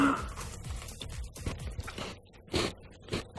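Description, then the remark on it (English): Biting and chewing of a homemade chocolate treat topped with Maltesers during a taste test, with soft, muffled crunches in an uneven rhythm and a couple of louder chomps near the end, no talking. “It doesn't sound very crunchy.”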